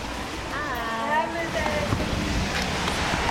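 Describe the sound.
Heavy rain pours down outside a home in northern Cincinnati in a steady, dense hiss that fills the whole scene, with some faint, muffled voices briefly audible beneath the downpour.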